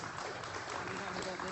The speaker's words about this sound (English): Don't hold your applause till the end.